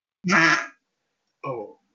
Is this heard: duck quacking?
yes